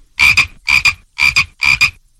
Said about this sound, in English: So it's a frog. Yes.